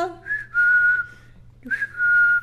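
A woman whistles a short melodic phrase, two sustained clear tones separated by a brief pause, fairly loud, with a faint low hum underneath.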